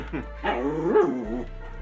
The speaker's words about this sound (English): Hey, no, you don't bark.